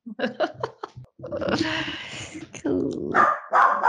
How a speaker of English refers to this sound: Okay, now these dogs are lit.